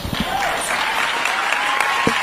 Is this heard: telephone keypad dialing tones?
no